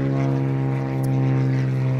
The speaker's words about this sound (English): Small plane overhead. Stand by.